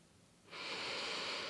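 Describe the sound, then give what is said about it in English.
After a brief moment of quiet, one long, deep, full breath begins: a steady, airy rush of air, fairly loud, that keeps going to the end without any talking. “So if you feel like it, maybe take a couple of breaths with me, like nice full breaths if it's possible.”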